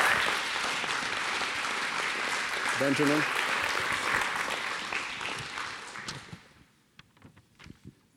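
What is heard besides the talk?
audience applauding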